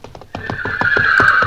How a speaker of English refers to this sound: that's a horse. Oh, that sound, man.